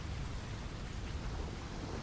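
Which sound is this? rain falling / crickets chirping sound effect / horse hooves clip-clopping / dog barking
rain falling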